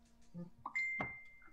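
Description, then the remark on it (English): A phone notification chime: a quick rising pair of bright electronic tones, then a clear high ring that lingers and slowly fades, with a soft murmur just before it. “Let's mute our phones, yo. That was me, sorry.”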